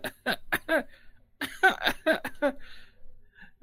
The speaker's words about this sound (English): And as this happens, you know, it's very difficult to see it, but you hear a little coughing.